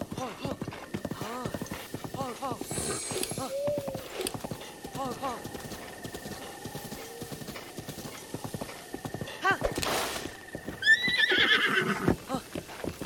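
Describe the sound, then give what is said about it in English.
Hooves clip-clop in a steady rhythm throughout as a horse is ridden south, with the horse whinnying loudly near the end; a person talks over the hoofbeats much of the time. “We're going on the horse, we're going south.”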